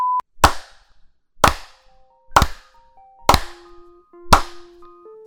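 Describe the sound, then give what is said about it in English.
Five sharp hand claps land at a steady pace about a second apart, each crisp and loud, after a brief high beep at the start. Faint held tones hum quietly between the claps. “Just five claps. 10 is too many.”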